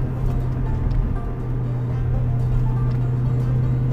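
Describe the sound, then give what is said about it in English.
A Mustang car engine with 410 gearing drones steadily at a low, constant pitch, a continuous rumbling hum as the car drives through corners, with no talking. “This pulls right through the corners, no problem, because of the 410 gearing.”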